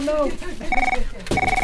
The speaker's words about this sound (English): Oh, there goes the phone.